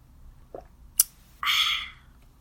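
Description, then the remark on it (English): Someone sips Arizona peach iced tea from a bottle: a faint tap and a sharp click, then a half-second breathy slurp that fades out, with no one talking. “Let me just take a minute and sip some tea.”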